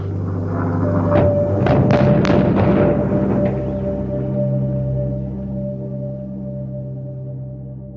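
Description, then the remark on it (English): In Youngstown in 1982, several dynamite blasts go off in quick succession as steel mill blast furnaces are demolished, then a low, lingering rumble settles under a steady droning hum. No one speaks. “In 1982, they dynamited some of the blast furnaces.”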